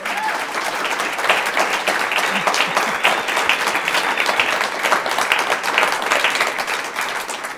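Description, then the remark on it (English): Sustained applause from the audience at a Civic Cocktail event at Town Hall Seattle, a dense, steady wash of many hands clapping at once, holding loud and even for several seconds without a break. “You've been a great audience, so give yourselves a round of applause.”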